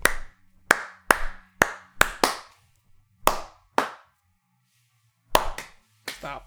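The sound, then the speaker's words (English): Hands clap under a table in an uneven run of about eleven sharp, crisp claps, some quick pairs and some spaced apart with short pauses, fairly loud and with no talking. “God, all right, you see, I at least clapped under the table so I wouldn't peek that.”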